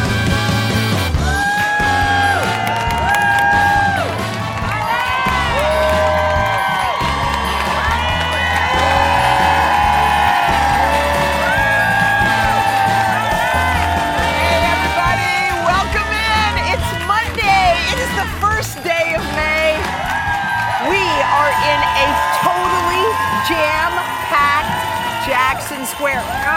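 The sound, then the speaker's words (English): A large crowd in New Orleans at a special edition of Today with Hoda and Jenna roars with continuous cheering and chatter, a dense, loud wall of voices with rising whoops that holds steady for the whole stretch. “This crowd is crazy.”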